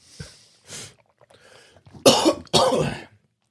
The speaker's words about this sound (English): It's one you get for like a picnic to pour people glasses of water out of. It's like what it's for. Just coughing into your big jug.